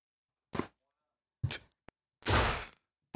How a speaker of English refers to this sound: The necessary slam. Mic drop, door slam.